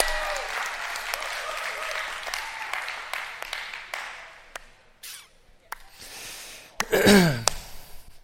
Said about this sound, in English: I was clapping, but y'all can clap. That's good.